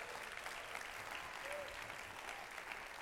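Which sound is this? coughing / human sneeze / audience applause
audience applause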